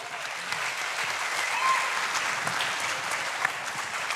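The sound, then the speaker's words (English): An audience applauds a business partner who has just been introduced, a dense, steady wash of many hands clapping that holds at an even, fairly loud level for about four seconds with no one speaking over it. “I don't clap for him, but I'm glad.”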